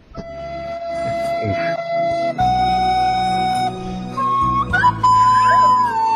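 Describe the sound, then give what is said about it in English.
A crudely played old makeshift flute, played at the bow of a ship, sounds a few long, breathy notes that step upward in pitch, wavering and squeaking unevenly over a low, murky rumble. “And he pulls out an old, like, makeshift flute, which he's not proficient in. And he starts playing.”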